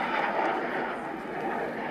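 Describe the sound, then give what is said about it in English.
A jet plane taking off, heard as a steady, broad roar of engine noise that stays loud and unbroken for the whole couple of seconds. “It's definitely a plane taking off.”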